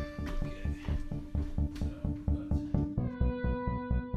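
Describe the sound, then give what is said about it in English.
A cat meows a few times outside a door over a steady, rhythmic musical backing with a regular pulsing beat; no one speaks. “And by the way, speaking of open, I now have a cat outside my door.”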